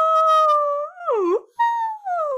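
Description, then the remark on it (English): A whale call sound effect: loud, tonal moans that hold steady, then swoop and bend in pitch, with a brief pause before another long, gliding call. No one speaks. “And then after 5 seconds of silence, you hear, woo!”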